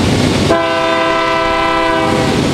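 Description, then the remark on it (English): A freight train rumbles loudly past a crossing in New Haven, and half a second in its horn starts blaring in one long, steady blast that carries over the heavy rolling noise, with no voices. “In New Haven, there were some shops down the hill by the river, but you always had to wait at the crossing for the freight train.”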